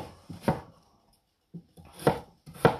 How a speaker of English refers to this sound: Right, so what you want to do with this ginger is you want to finely slice it.